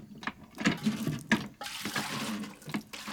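Water pours and splashes in uneven surges, with gurgling bursts over a steady rushing flow, as one of the water tanks of the Beagle is filled at Bahia.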